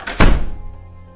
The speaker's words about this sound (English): A door slams.